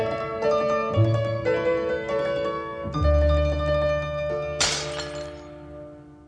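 Sustained instrumental music from a song plays, then a barmaid breaks a drinking glass once near the end, a bright, crisp shatter that rings out and fades over the lingering chords.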